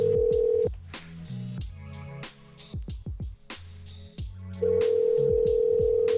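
A steady phone dial tone gives way to a quick run of keypad beeps, each a short two-pitched tone pressed in an uneven rhythm, before the dial tone hums back in. No one speaks.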